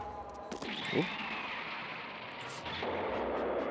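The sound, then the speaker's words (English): Cartoonish explosions and missile fire in a Voltron (Golion) animated robot battle, with a sword that causes explosions: a sharp blast, a quick whooshing streak, then another burst that gives way to a steady roaring rumble, loud, with no talking. “Dodge a sword that causes explosions. And another sword that causes an explosion.”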